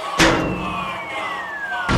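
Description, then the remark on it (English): A steel chair slams into someone's face during a wrestling match, a loud sharp clang followed by a long, slowly falling metallic ring, then a second hard smack at the end. “Jinjax hits him with a steel chair to the face!”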